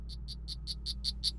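A poison frog, a pet named Lenny that is kept in a pocket, calls in a quick, steady series of about eight high, buzzy chirps that grow slightly louder, with a low background hum underneath and no voices.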